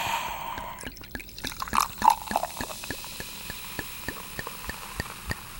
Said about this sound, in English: Ooh, it sounds like a $17 beer. Yeah, you hear all those people applauding inside the bottle.